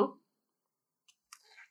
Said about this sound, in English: Mm-hmm. I took a moderate sip.